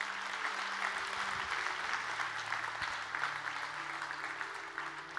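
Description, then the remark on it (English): An audience at a worship service claps steadily for several seconds, giving the Lord a hand clap, a dense, sustained wash of hand claps at moderate volume with no one speaking over it. “Can we give the Lord a good hand clap today?”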